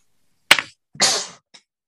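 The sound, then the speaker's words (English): A single sneeze: a sharp, sudden burst, then a longer breathy, hissing blast a half-second later, ending with a faint short sniff. No one speaks. “Bless you.”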